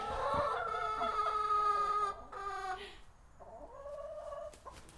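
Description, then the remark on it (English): A flock of hens, with new hens just added, clucks and squawks in agitated, overlapping bursts as they fight, several birds calling at once, with a louder stretch of squabbling early on before it settles slightly. “You can hear how much disturbance there is within the group, but I think they'll be fine.”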